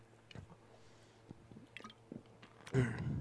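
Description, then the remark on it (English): Someone drinks water: a few soft, wet sips and swallows, then a louder burst near the end. No one speaks. “Excuse me, get some water here.”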